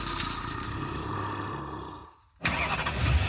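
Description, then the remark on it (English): A just-bought used car's engine cranks over and over without catching, a strained mechanical whir that cuts out briefly, then grinds loudly again. No voices. “If you were in a horror movie, this would be the part where the used car you just bought doesn't start.”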